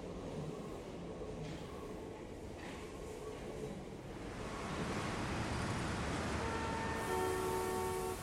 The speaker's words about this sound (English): I hopped on the subway and I headed to Manhattan.